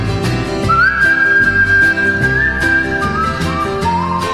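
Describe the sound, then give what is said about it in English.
A grandmother whistles a slow, sustained hymn-like melody, long held notes gliding between pitches over a full instrumental backing with steady percussion, clear. “Grandma whistling, what a friend we have in Jesus.”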